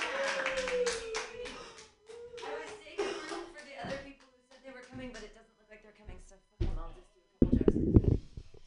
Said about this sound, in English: Hooray. All right, keep clapping.